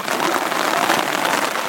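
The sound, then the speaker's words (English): Steady, hissing rain starting to fall in Grafton, a dense even wash of fine drops with no voices and no pauses for the whole short stretch. “It started to rain here.”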